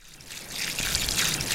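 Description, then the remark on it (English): A steady, gentle trickle of spring water at low flow, roughly 1 1/3 gallons per minute, similar to a kitchen faucet, a continuous splashing hiss that swells slightly after the first half second and stays even, with no voices. “And the amount of flow looks pretty similar to what you would get out of a kitchen faucet.”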